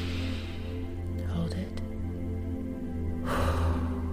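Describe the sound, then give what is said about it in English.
A slow, audible deep breath is drawn in and then pushed out in a louder, airy rush over a steady low hum, a power breath taken during a guided breathing exercise. “Power breath, dissolve it.”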